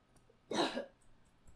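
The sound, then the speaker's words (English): A single sharp cough bursts out with a breathy rasp, lasting about a third of a second, then quiet room tone returns with no talking. “Oh my God, I don't have a cough button.”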